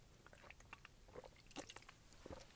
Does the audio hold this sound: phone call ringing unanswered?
no